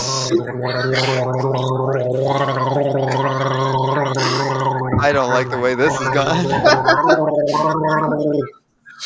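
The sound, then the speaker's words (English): A long, continuous bout of gargling a whole cup of water, loud, bubbling and wavering for several seconds before stopping abruptly, with a few garbled words spoken through the gurgle. “I'm going to do this entire cup of water just gargling.”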